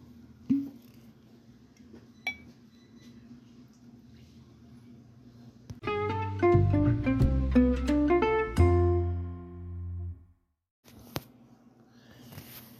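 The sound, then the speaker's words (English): Kilbeggan whiskey glugs steadily from a bottle into a glass for about four seconds, fairly loud, with a few light glassy clinks before and after. “Pour a little bit more Kilbeggan.”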